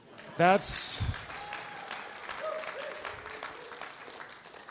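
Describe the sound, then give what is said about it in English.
A crowd bursts into sustained applause after a loud shout, dense clapping filling the space with scattered cheers and whoops rising over it. “You can clap right now.”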